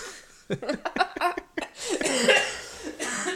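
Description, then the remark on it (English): A man coughs off-microphone: a run of short, sharp coughs, followed by a longer, raspy stretch of hacking that sounds slightly muffled. “I hope these coughs like come into the microphone a little bit.”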